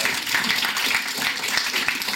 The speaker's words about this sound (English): I'm leaving the applause in so the sponsors know how cherished they truly are.